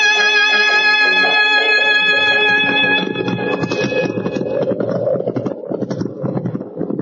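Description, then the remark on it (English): After a few seconds of sustained musical tones, horses' hooves clip-clop in a quick, steady trotting rhythm, fairly loud, with wind-like noise around them and no one speaking, as horses are ridden into town in cold winter weather. “So just to make sure, how about riding into town and getting some real warm clothes?”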